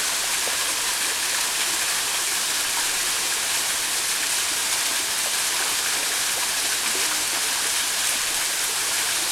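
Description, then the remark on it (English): Steady, dense rush of a waterfall with stream water flowing, a constant hissing roar that fills the scene without pause, loud, no voices, at a peaceful, untouched site where the water is reached by skipping over stones. “The women in the group pass through the gate into the waterfall, skipping over stones to reach the water.”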